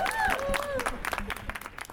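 An audience in Liverpool breaks into a round of applause for a panel, a dense, steady patter of many hands clapping, with a few whoops and cheers rising over it at the start before the clapping carries on.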